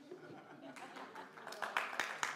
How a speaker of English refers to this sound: You don't need to clap that.